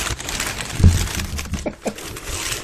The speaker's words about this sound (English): Your guts are very papery. Yeah, I was gonna say. There's wrapping paper. All right, just open it up.